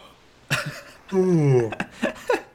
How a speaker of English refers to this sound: You hear that? That's me yawning. Yep. You did that. Am I keeping you awake over there? Barely.